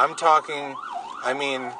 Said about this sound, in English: Well, when you say, let me just, oh, we got a little ambulance interruption.